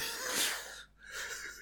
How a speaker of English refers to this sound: Fucking yawn. Fuck you, bodily function.